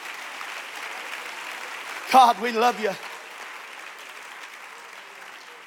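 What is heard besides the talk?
audience clapping hands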